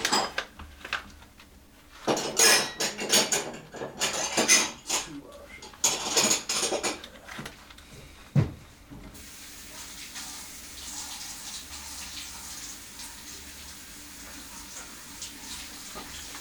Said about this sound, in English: Dude, these mics are so sensitive. I can, hear you, washing dishes on the headphones.